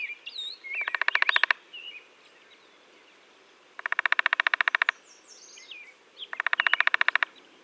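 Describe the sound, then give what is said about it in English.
Three bursts of a downy woodpecker's rapid, rattling call sound over a few seconds, each a quick run of sharp notes. Other birds chirp softly in the background between them. “Downy woodpeckers have a variety of vocalizations, including a short pick call and what's been called a rattle call.”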